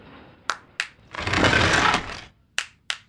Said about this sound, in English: See? The entrance opens with a clap! Alien technology. We call it the Clapatron.